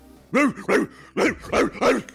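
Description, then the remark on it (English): A person imitates a dog barking with five loud, voiced barks in quick succession, each a short rising-and-falling yelp, the middle pause slightly longer than the others. “He barking? Yeah, he is barking.”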